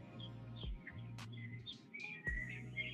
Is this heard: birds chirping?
yes